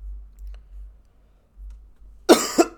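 A harsh cough from a person sick with a virus breaks in near the end as two quick bursts, the second a bit weaker, after a stretch of near-silence with only a faint low hum.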